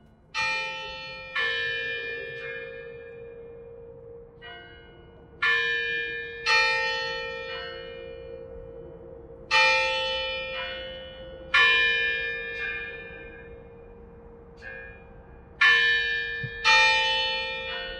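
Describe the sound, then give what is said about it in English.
Large bells ring out at Carillon Historical Park on the outskirts of Dayton, Ohio, on a chilly early December day in 2019, in a slow, uneven sequence of strong strikes, each with a bright metallic attack and long shimmering decay, overlapping over a sustained hum with no voices present. “So one chilly, early December day in 2019, we found ourselves on the outskirts of Dayton, searching for a historical brewery and listening to, of all things, bells. Lots of bells.”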